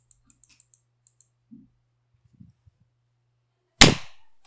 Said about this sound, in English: Wow, that last clap was like, it was powerful. Yeah. It sounded normally, good. Normally I feel like Discord like cuts the clap somehow, but. Yeah, that had that had a really full body to it.